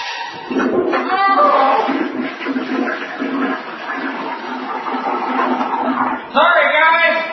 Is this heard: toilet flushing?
yes